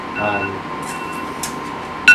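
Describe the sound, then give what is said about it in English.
An electronic alarm sounds with steady, high-pitched tones, ending in a sudden louder beep. A faint murmur of voices sits underneath. “As the alarm is going off.”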